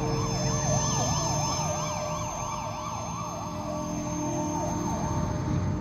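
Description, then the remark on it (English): An ambulance siren wails continuously, rising and falling in quick, steady cycles, loud, over a low rumble of road traffic. “And this very kind person laid me on the floor, they got an ambulance.”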